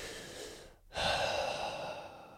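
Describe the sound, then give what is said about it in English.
A slow, deliberate, conscious breath: a soft airy stream, a brief pause, then a fuller, louder rush of air that sustains steadily to the end. No talking. “But now that I'm saying it, I'm going to say consciously breathe.”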